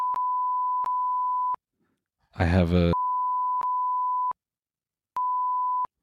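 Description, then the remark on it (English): Steady, loud censor bleep tones at a single pitch, sounding in three long stretches that cut over the speech, with a brief spoken phrase audible in a gap between them. “I can hear the bleep all of this.”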